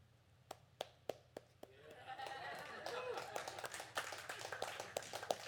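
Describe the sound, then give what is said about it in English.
A handful of sharp, separate claps ring out, then a crowd joins in and swells into sustained, dense applause with scattered voices calling out beneath it. “I have never asked for applause, but I thought I would sure applaud that one.”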